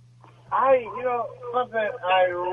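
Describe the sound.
A caller from Los Angeles speaks through a tinny, narrowband phone line with an echoing, doubled quality, riding over a steady low electrical hum throughout.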